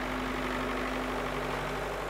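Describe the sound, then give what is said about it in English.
An old tractor named Yitzi idles steadily with a low, constant rumble and a steady hum, moderately loud, with no voices present. “Once a week, she drove Yitzi, her trusty old tractor, into town with a wagon full of delicious squash, leeks, carrots, kale, onions, and whatever else might be in season.”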